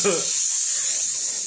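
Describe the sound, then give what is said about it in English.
An aerosol can of orange spray paint for the body hisses in one steady, continuous burst, fairly loud, with a brief snippet of voice at the very start. “what is this orange spray paint? It goes on your body.”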